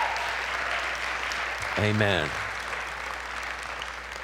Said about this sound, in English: Thank you. If you're thankful, why don't you give him a hand clap of praise today?